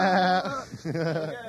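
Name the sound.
sheep bleating sound effect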